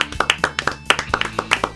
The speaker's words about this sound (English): And let's clap it out. Let's clap it out.